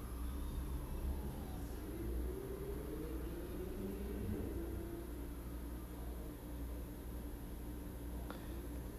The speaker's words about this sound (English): Sirens just went off, loud sirens, and then the sound of a motorcycle taking off big time.